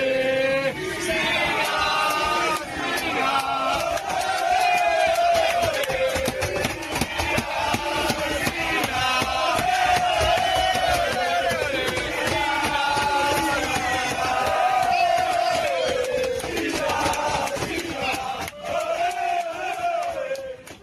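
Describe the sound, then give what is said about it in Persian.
Italy national team players chant together in loud unison, a rhythmic, repeated cheer for their teammate Spinazzola shouted with raucous energy, rising and falling in waves for about twenty seconds. “این قسمت از موزیک رو اختصاص بدیم به اون چند ثانیه‌ای که بازیکن تیم ملی ایتالیا با هم همصدا اسپیناتزولا رو تشویق می‌کنند و اون وایس تشویق رو پلی کنیم.”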